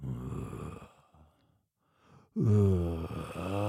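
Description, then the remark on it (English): A voice imitates a man's loud snoring through the night: a long, rumbling inhale, a short quiet pause, then a second, louder throaty snore that drags on, forceful. “Was it just his snoring? Just his snoring.”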